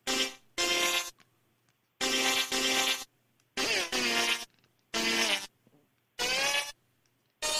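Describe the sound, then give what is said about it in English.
A string of about six loud, buzzy fart noises, each lasting under a second with short gaps between, some bending in pitch as they sputter out. No voices are heard. “That was a weak fart.”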